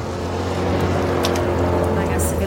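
A small RIB speedboat engine drones steadily and loudly, its low hum mixed with constant rushing water and wind noise for the whole stretch.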